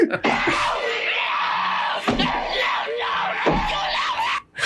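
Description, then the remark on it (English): A Tasmanian devil screeches loudly and almost without pause, a harsh, raspy, wavering shriek with a few brief breaks, with no other voices. “So the screeching too. Yeah, so it was a Tasmanian devil.”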